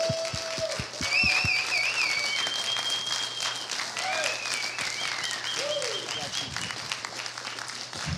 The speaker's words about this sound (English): Come on, stay standing for a minute. Give the Lord a big old clap. Come on.